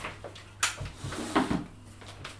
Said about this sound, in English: What are you shutting the door for? Because that's throwing me. Why is it throwing you? It just is.